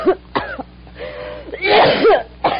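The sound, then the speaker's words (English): A series of harsh, wet coughs from one person, coming in short bursts with a longer rasping, throat-clearing fit in the middle and a final sharp cough at the end. “You got a bad cough, you need some sun.”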